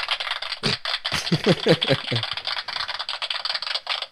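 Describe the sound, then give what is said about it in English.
Canned applause from a sound effects machine: a steady, dense crackle of many hands clapping for about four seconds, with voices briefly cheering or talking over it early on. “All the people in my sound effects machine that are clapping for how excited they are.”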